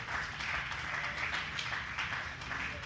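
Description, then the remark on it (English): An audience claps their hands together to thank God, a dense, steady wash of applause with no voices, holding an even loudness for the whole stretch. “If that's you here today, would you just clap your hands and would you thank God for that understanding?”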